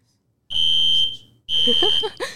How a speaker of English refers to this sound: Oh, just with the fire alarm in the background?